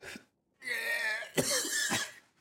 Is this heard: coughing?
yes